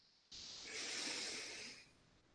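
A single long, deep breath drawn in through the nose, an airy rushing hiss that swells and then fades over about two seconds, clear with no talking.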